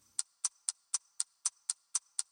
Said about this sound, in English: Hey, what's that mysterious ticking noise?